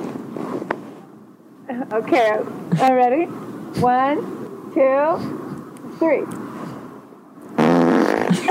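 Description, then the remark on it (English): A voice does 'face farting', imitating farts with its mouth by blowing about seven loud, buzzy raspberries in quick succession, each with a wobbling, sliding pitch, over a low steady background hum. “Yeah, face farting.”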